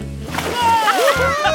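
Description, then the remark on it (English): A quick splash and slosh of water as someone does a flip into a pool at a pool party, with bright, sliding whistle-like tones ringing over the top of it. “I love the pool. Watch me do a handstand! I admit this is pretty fun. Watch me do a flip.”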